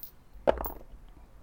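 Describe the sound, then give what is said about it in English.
Dice clatter onto a hard table: one sharp clack followed by a few quick, lighter rattles as they tumble and settle, not loud, with no talking. “Your dice do sound kind of cool.”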